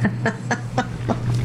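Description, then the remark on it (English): A chicken in a video game clucks in a quick, steady series of about six short clucks over a constant low hum, moderately loud, with no talking. “And the chicken.”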